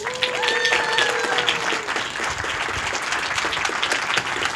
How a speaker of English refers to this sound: So I'd appreciate it if you could help me give our next speaker a huge welcome and a round of applause, Damon John.